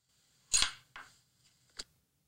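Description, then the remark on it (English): A few sharp metallic clinks, magnetic metal rings knocking together. The first hit is loudest and rings briefly, followed by two lighter taps at uneven intervals. “Magnetic that is in a dungeon that you might use? Ooh, cock ring. Yeah, like the cock rings that”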